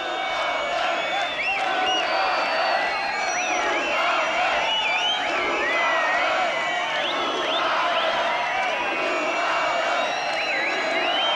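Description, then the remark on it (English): A concert crowd of about 2,200 to 2,250 guests cheers loudly and continuously, a dense wall of voices with shrill whoops and shouts rising and falling throughout, steady for the whole stretch. “A pretty good a pretty good crowd.”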